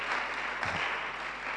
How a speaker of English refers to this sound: Some of you are not clapping. I thought you all be clapping.